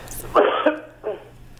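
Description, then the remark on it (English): A short, rough throat-clearing cough from a catch in the throat due to hay fever: one harsh burst followed by a smaller second rasp, moderately loud with a low hum underneath and no speech. “Just got a catch in your throat.”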